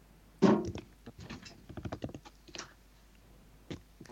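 Rapid keyboard typing with irregular clicks and clacks, starting with a heavier thunk and continuing in uneven bursts close by, then trailing off to a few isolated key taps.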